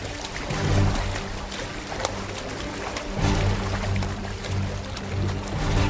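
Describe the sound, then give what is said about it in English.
Water sloshes and splashes steadily over a low, droning hum, with a few sharper splashes breaking through, made by something unseen moving in the water. No one speaks, and the watery noise is moderately loud. “The splashing's coming from over there now!”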